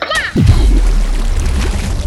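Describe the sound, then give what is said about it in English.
A quick downward-swooping splash into the ocean at the start of a dive toward the Mariana Trench, followed by a steady, low, bubbling rumble that continues for about two seconds, with a brief vocal sound just before the plunge. “splash!”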